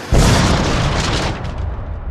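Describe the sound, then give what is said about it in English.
A plane crashing into a bus: a sudden loud crash erupts into a heavy, roaring explosion with deep rumbling and crackling debris that stays loud for a couple of seconds before thinning out slightly. “A plane crashes into the bus.”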